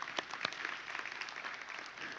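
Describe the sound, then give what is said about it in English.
A church audience applauds the preached message of hope in the risen Jesus Christ, a dense patter of many hands clapping steadily at moderate volume, with a few sharper individual claps standing out early and no speech. “We're going to clap for that.”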